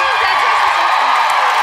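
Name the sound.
audience cheering and clapping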